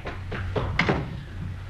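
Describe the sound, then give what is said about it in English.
A door thuds shut, followed quickly by a few sharp metallic clicks as a man locks it from the outside, over a low steady hum, with no one speaking. “He locked the door on the outside.”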